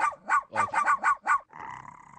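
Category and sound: animal, chihuahua growling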